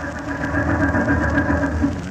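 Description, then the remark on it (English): An old taxi cab engine stalling, rumbling and chugging in a low, rough drone for about two seconds. No voices are heard. “Doggone it. She stalled again and I can't stand it.”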